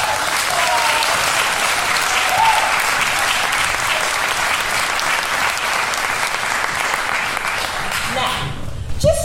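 Sustained, loud applause from an audience for the character Max on stage, a dense crackle of many hands clapping steadily for about nine seconds before tapering off abruptly at the end.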